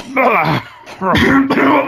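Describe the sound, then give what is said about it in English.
Two rough, voiced bursts of deliberate throat clearing and coughing, fairly loud, separated by a short pause, with a gravelly, strained vocal quality. “sorry, that was actually deliberate coughing on it.”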